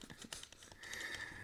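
Rapid, quiet clicking of game controller buttons as a player clicks through on-screen text too fast to read, a quick irregular series of light plastic taps, with a faint steady electronic tone humming in the background partway through.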